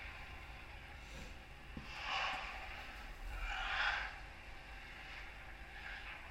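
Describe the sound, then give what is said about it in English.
A person imitates a stag with two harsh, breathy snorting bellows a second or so apart over a low background rumble, with no talking. “doing an impression of a stag.”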